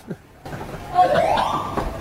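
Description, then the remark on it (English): A building fire alarm wails in the background while the building is being evacuated, a steady electronic tone with a slight rising sweep, muffled, over low room noise and faint voices. “There's a fire alarm in the building.”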